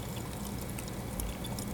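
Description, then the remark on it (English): A steady hiss of fizzing sparkling water as it is being drunk near the microphone, with faint crackling bubbles, continuous and fairly quiet, with no talking. “And also, there's a funny noise when I drink. I'm drinking some sparkling water, and when it comes up to the microphone, I don't know if you can hear it.”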